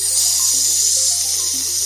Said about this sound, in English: Oh, what's something sizzling? Aha, it's a 50 burger. Those guys, 50 burgers, serving them up every night.